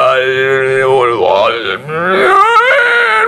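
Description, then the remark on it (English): A voice sings on an inward breath, producing a loud, strained, wordless tone that slides and wavers in pitch for about three seconds, briefly dipping before rising again, with a groaning, almost mooing quality. “I mean, you can sing a long time that way because you're breathing in.”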